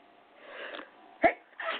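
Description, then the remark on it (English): A single sneeze: a soft breathy intake builds up, then a sharp, sudden burst, followed by a brief breathy exhale. No one speaks. “I'm going to sneeze.”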